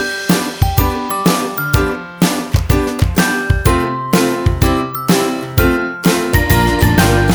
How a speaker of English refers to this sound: Jingle bells all the way.